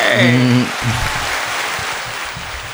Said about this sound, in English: Big claps.